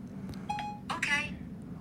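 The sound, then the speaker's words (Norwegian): A phone sounds a few short electronic tones as it starts dialing a call to emergency services after a voice command to Siri, clear, with a low background hum and faint voices underneath. “Se, og nå ringer nødetatene.”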